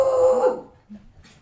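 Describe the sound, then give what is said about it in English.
One loud dog bark from Rocco, the speaker's dog, with a sustained, tonal edge, then fading into a few faint, soft noises and near quiet. No voices are heard. “He's my dog.”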